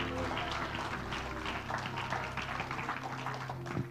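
A church audience claps their hands to the Lord during a morning service, a steady, dense patter of many overlapping claps, with a low sustained hum and faint voices underneath throughout.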